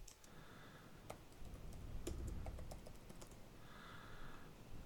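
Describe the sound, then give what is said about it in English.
Quiet, irregular tapping of keys on the keyboard of a new laptop, scattered sharp clicks bunching into a quicker burst midway, over a soft low background hum with no one speaking. “I'm struggling with the keyboard size.”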